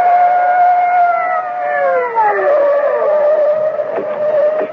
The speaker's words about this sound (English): Above them, on the bank, at the edge of the circle of light from the overhead street lamp, the bushes still wave slightly in the wake of Augie's flight from the blare of police sirens as two patrol cars come hurtling out of the night.